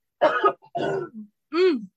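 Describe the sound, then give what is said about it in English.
A loud cough followed by a rough throat clearing, in three quick bursts over about two seconds, with no talking. “So I'm a cough one last time.”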